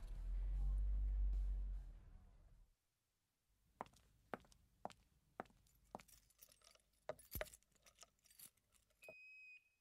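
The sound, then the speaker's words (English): A low rumble fades to quiet, then a set of keys to the Video World store jangles and clinks in a series of sharp metallic bursts, ending with a few high electronic beeps. “Your own key and code to the alarm.”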